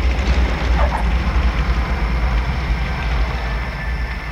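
A light aircraft, the 'grasshopper', taxis and takes off at night into the moonlight from a field runway marked by lights, on an SOE mission; its engine drones in a steady, heavy rumble, a dense low roar with a rougher rasp on top, holding fairly even throughout with no voices.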